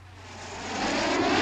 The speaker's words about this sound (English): Ooh, a plane. A rescue plane. Nice bright orange. I recognise that model, but I can't pin it down exactly.